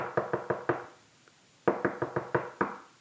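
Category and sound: impact, knocking on a door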